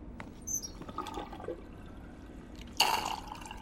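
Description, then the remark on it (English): Water runs and gurgles from a tap in fits and drips as the water supply is cut off, then a sudden harsh sputtering burst near the end as the flow chokes off. Fairly quiet, with no voices. “The water's off.”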